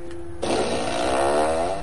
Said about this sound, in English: I'm a fart machine enthusiast